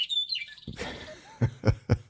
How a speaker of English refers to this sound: Those darn birds kept us up or woke us up in the morning.